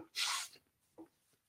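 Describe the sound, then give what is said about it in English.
A single forceful nose blow into a handkerchief, a loud, breathy blast lasting about a third of a second, followed by a brief soft vocal noise and quiet. “So we're going to watch it one more time and see if I had to blow my nose in a hanky, I go like this.”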